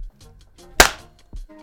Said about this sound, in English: We all clapped, don't worry.